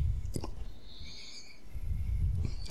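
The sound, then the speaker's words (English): Wet slurping and smacking noises of an animal eating, with short sharp bursts at the start and end and a low, steady rumble underneath; a faint high whine drifts through the middle. “Yeah, I like the slurping noises that she makes.”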